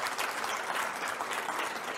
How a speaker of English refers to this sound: Any new faculty in the house? Big round of applause. Welcome.